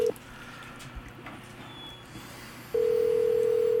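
A phone's ringback tone on a call placed from an iPhone: a steady electronic burst ends, a quiet pause with faint background noise follows, then the loud, even tone starts again. No one speaks.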